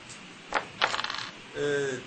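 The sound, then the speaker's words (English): Four dice are rolled, clattering onto a hard surface with two sharp knocks and then a quick rattling tumble that settles fast. Afterward, a person briefly speaks. “Roll four dice and tell me how many successes you get.”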